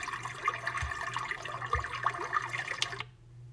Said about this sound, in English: This one is like the straight running brook type sound where it's just kind of like, yeah, it's just cool, man. We're just riding the wave, man. Cool little running brook sound.